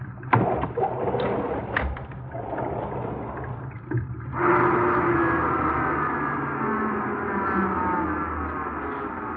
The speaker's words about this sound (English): I'll open the garage doors.